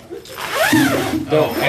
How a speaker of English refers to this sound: You don't need to zip that up.